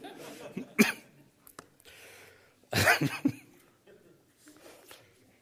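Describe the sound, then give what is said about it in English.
A person coughs: one short sharp cough, then after a pause a louder, rougher burst of two or three coughs, with quiet background noise in between. “Excuse the cough, there's nothing wrong with me.”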